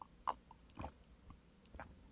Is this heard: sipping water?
yes